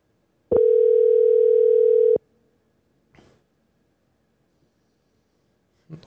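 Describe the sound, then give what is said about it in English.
A telephone dial tone on an outgoing call to the speaker's mother: one loud, steady, low-pitched hum lasting under two seconds that cuts off abruptly, followed by a couple of faint, brief rustles. “Should we call her? Let's call her.”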